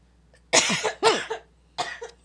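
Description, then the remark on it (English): Three harsh coughs into an elbow in quick succession, the first two bunched together and the third after a short pause, with no talking around them. “Oh, to cough in my elbow.”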